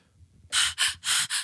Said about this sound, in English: That's sexy breathing, guys. That is sexy breathing.